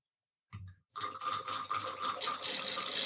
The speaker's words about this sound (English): The sound you are about to hear is the sound of wine going through another wine gadget, which is from Venturi. And here we go. It's an aerator. And I pour it in the top. Listen to this.